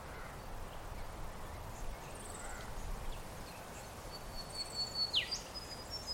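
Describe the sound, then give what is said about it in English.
Thin, high bird whistles drift in over a steady outdoor hiss and low rumble, with a brighter run of chirps near the end including one quick falling note. “So how often do you stop and listen to the sound of birds?”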